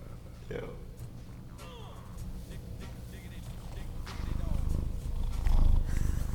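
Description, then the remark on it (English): A cat purrs right against the microphone, a low rumbling drone that swells louder toward the end, with faint voices murmuring in the background. “You know the Sphinx. That's this cat.”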